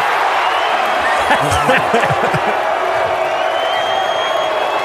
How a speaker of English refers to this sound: Scattering of boos, some applause, obviously, some yells.